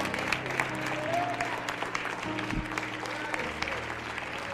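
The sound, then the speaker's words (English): An audience claps hands during a sermon as the preacher urges them to clap and receive grace, a dense, sustained wash of applause, steady and fairly loud throughout, with a low organ-like tone and murmuring voices underneath. “Now clap your hand and receive it.”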